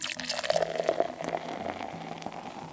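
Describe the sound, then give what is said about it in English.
Sangria is poured steadily into a chalice for a few seconds, a gurgling trickle with a rising hollow tone as the vessel fills; no one speaks. “Pour a little bit in the chalice I made out of one of my intern's skulls.”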